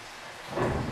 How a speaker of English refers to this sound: For now we must be content in the fact that we are safe from this evil storm. There are fouler things than acid rain in the shadows of Aetherrealm.